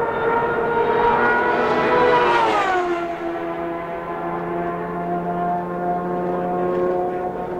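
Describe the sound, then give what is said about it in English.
An IndyCar race car, number 31, the LCI Renard Honda driven by Andre Ribeiro of Sao Paulo, Brazil, screams loudly at high revs on track, its pitch sliding down sharply as it passes, then settles into a steady, slightly lower drone as it pulls away. “out of the track now, coming up, speed car number 31, the LCI Renard Honda, driver from Sao Paulo, Brazil, Andre Ribeiro.”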